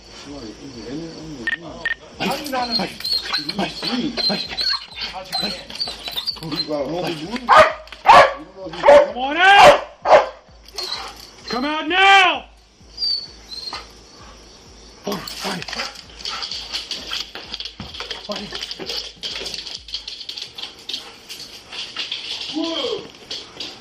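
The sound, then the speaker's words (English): A police dog barks repeatedly and loudly in sharp bursts at a suspect inside an apartment, mixed with a man shouting commands, with a steady tonal hum in the background. “That dog's gonna bite you if you don't come out.”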